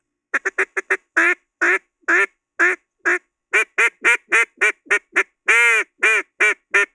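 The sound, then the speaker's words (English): A duck call blown hard gives a loud series of raspy quacks: a quick run of short ones, then longer, drawn-out honking quacks at a steady pace, with no talking. “I'm hard blowing. Yeah, that's as ducky as something could be.”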